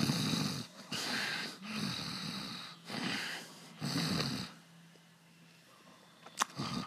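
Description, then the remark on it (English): Several people imitate snoring together, producing four rough, rattling inhaled snores in a steady rhythm, fairly loud, followed by quieter breathing and a brief click near the end. “Can everyone make the snoring sound?”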